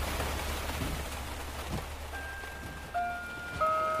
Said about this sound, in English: Damn this rain.